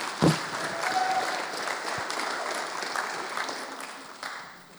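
An audience claps steadily in a dense, even wash of applause lasting several seconds, with a brief louder burst at the start before it gradually thins out.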